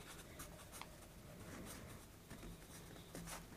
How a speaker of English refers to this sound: I need a pencil. I need to write something down so I can remember it for later.